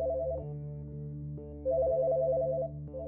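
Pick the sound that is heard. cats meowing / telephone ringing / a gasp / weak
telephone ringing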